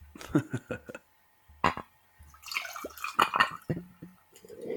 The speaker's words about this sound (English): All right, and I don't have any beer, so I am drinking Bullet Bourbon Frontier Whiskey. Very nice. So I'm gonna do a little pour for the audience.